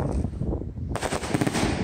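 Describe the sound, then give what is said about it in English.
A 30-shot firework cake fires colored salutes: a rapid, continuous barrage of loud salute bangs, the reports blurring into a dense crackling roar that intensifies partway through, with no voices. “So that's all this is just colored salutes.”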